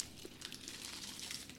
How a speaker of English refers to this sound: Enjoy the sounds of wrapping paper wrappers being opened or not opened, as I'm doing right now.